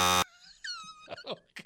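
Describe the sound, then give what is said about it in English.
A loud, harsh buzzer blares for a split second, the classic wrong-answer rejection buzz used to reject a bad joke, then cuts off and gives way to high, wavering vocal sounds and a few short spoken syllables. “Get that buzzer ready.”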